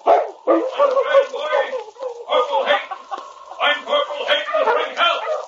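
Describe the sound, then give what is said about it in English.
A voice imitates a dog barking: several loud bursts of rough barks and yelps come in quick succession, separated by brief pauses, as the great dog King in a story barks at Corporal Hayden's cabin. “The great dog barked several times”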